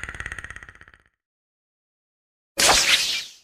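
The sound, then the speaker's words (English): A rapid, rattling series of clicks fades out, then after a short silence comes a single loud whip crack from Indiana Jones with a brief swishing tail, sharp. “Indiana Jones, Whip.”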